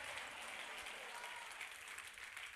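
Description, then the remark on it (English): A crowd of people at a sermon clapping their hands together, a dense, steady wash of many overlapping claps that holds at an even level for the whole few seconds without pausing. “Clap your hands and shout, I am untouchable.”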